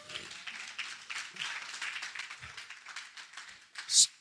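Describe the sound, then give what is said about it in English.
A crowd claps steadily as a clap offering to God, a dense patter of many hands with a rapid, even rhythm, and one sharper, louder clap stands out near the end. “Come on, let's give a clap offering to God.”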